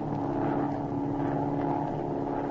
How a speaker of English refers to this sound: That afternoon, Agent Z and Patricia flew out over the ocean for an observation flight.